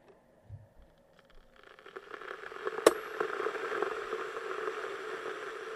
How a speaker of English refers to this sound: A kettle.